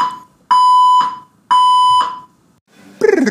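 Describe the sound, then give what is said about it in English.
A fire alarm blares two loud, steady electronic tones, each about half a second long with a brief gap between them, piercing, followed by a short burst of different noise. “We had a fire alarm issue there.”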